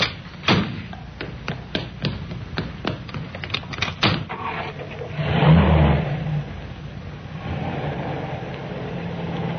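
A series of sharp clunks and knocks, like car doors shutting, followed by an engine starting up, revving and settling into a steady hum as the car pulls away, with no talking.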